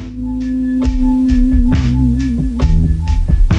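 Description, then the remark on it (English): A hip-hop instrumental intro: a sustained, wavering low synth tone under slow, heavy drum hits landing about once a second, loud and up front, with no vocals yet. “I'm going to play this one, which came out a couple weeks ago, and I've been thinking about the song since the show, and I really like it.”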